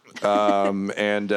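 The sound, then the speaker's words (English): A voice imitates a punch to a zombie's toothless mouth with a drawn-out, buzzy vocal grunt that swells in two loud pushes with a brief dip between, rather than a sharp percussive hit. “that's the sound of a punch to the toothless mouth.”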